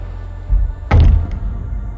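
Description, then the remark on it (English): A man slides a glass sliding door shut behind him after walking in: it rumbles along its track and closes with a solid thud, followed by a faint click, with no one talking. “Slides the door shut behind him.”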